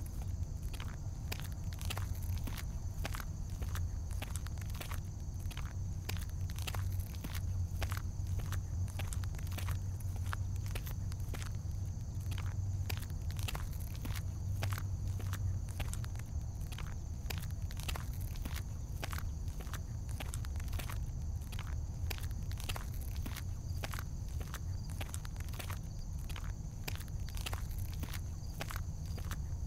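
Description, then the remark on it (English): Steady footsteps walk at an even pace for the whole stretch, each step a crisp, crunchy scuff, over a continuous low rumble and a faint high-pitched hum, with no voices. “You begin to walk slower to match the change in energy.”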